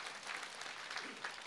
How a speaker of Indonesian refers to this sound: Boleh tepuk tangan buat Tuhan sekali lagi.